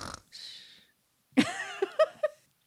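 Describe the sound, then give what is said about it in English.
Someone mimics snoring: a raspy breathy drag, a short pause, then a snorting rumble followed by a few quick voiced grunting puffs. “The snorting? Oh, snoring? Sound? Pretend snoring? Pretend snoring.”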